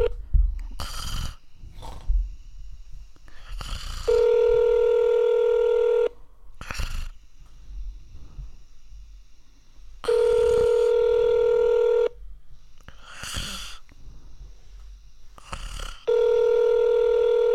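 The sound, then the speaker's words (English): A phone line rings out with a steady electronic ringback tone while calling the electronics department of a Target store in Salt Lake, Honolulu, Oahu: three two-second rings spaced evenly apart, with soft rustling and breathy noises in the quiet gaps between. “Come on, pick up the phone, then.”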